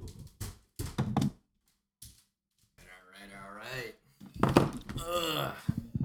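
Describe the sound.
A handful of sharp knocks on a door in quick succession, then a short pause before a voice starts talking over a faint background.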